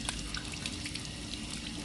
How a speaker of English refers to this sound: I'm rinsing off the potato. I rinse it off with some water, my hands. Make sure it's kind of clean.